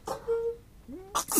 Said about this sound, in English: Bless you. Bless you.